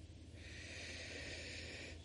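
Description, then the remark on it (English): A single long, steady breath drawn in through the nose during a breathing exercise, soft, with an airy hiss lasting about a second and a half over a low background hum. No one speaks. “And when you're breathing in, I like to breathe in through my nose.”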